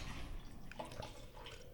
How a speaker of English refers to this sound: In case you can't tell, he's pouring wine. Wait a minute. Since I'm already pouring, I might as well keep pouring. Keep pouring. Finish it.